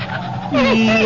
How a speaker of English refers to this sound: Yes, that's a good dog. Good boy, Attila.